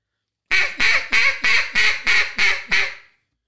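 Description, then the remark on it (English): A duck call blown in a Cajun squeal: a quick, even series of eight sharp, raspy quacks, each bright and slightly descending, played loud with no talking underneath. “And just for reference, here's what the Cajun squeal sounds like.”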